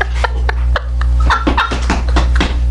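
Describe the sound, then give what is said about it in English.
A woman imitates a duck, making a quick run of short, nasal quacking sounds in an uneven rhythm over a steady low hum. “she tried to get her duck on real quick.”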